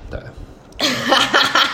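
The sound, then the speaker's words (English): A loud, rough belch erupts after a brief quiet stretch, drawn out for about a second with a gurgling, wavering tone. “That is so belch.”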